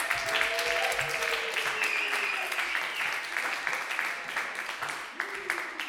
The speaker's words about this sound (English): Clap for him right now. Do what he did again, but louder.